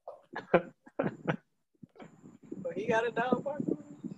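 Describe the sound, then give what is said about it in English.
A dog lets out a few short, sharp barks in quick bursts, then a voice starts talking over a low background after a brief pause. “But the dogs are barking all day long. I heard a dog barking.”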